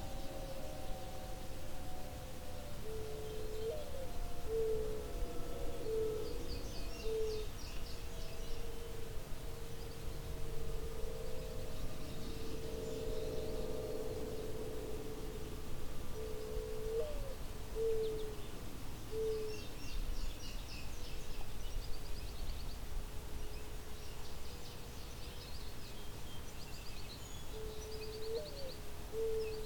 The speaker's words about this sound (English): There's also some goldfinch nearby, indigo bunting a fair bit off, song sparrow.